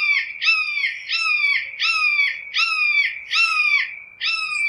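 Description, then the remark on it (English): A red-shouldered hawk screams its kee-ah call about six times in quick, steady succession, each loud, harsh and slurring downward, with no voices. “While courting or defending territories, they call in a distinctive screaming kee-ah call, usually repeated 3 to 4 times.”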